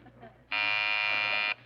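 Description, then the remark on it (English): A loud, steady electric doorbell at the front door buzzes for about a second, cuts off, then starts again briefly. The harsh, harmonic-rich drone sits over a faint low hum. “It's the front door.”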